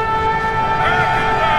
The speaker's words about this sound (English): As he came to the valley's brink, he set to his lips a great black horn and blew a ringing blast.